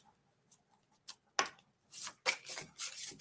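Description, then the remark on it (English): Cards being shuffled: a few faint ticks, then a run of soft, papery riffling bursts in a quick, uneven rhythm, bright and hissy, with no voices. “They want me to shuffle it again.”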